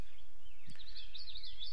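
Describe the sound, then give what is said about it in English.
Many birds chirping together, with a steady, high, warbling twitter that runs throughout at a soft level, broken once by a brief low knock partway through. “I've never seen this many birds.”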